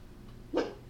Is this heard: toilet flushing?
no